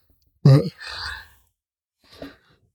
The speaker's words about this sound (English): Excuse the yawning. Again, tired. I'm tired. Mostly I'm tired because garden stuff.